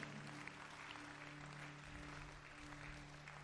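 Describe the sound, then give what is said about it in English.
An audience claps steadily, a dense wash of many hands with no pauses and an even loudness throughout, over a low steady hum. “You see the way you are clapping, it is deliberate.”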